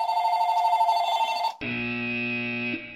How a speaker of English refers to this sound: I'm going to start again because in addition to that, my phone started ringing. Yes. So, God damn it. Let me just turn off the ringer.